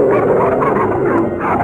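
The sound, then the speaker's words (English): Several dogs bark and yip at once in a loud, continuous, overlapping clamor, with excited high yelps mixed among the deeper barks. “Killer dogs he had not yet learned to tame.”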